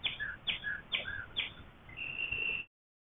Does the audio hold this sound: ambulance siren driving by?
no